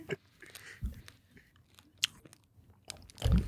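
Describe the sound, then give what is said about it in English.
Wet chewing and crunching with several distinct bites and mouth noises, irregular in rhythm, ending in a louder burst of munching; no one speaks. “I don't know how you can chew it.”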